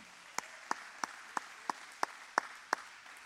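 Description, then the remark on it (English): A church audience gives a round of applause for the media team: steady, evenly spaced hand claps, about three per second, ring out sharply over a continuous low wash of crowd noise, with no talking. “Let's give a round of applause for our media team.”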